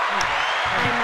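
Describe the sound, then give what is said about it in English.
A brief burst of hand clapping from a few people applauding a guest after a trivia game, a dense, steady patter of claps with no pauses, lasting about a second. “Claps for yourself.”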